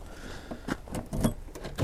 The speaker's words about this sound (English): Alrighty. And lock up the car.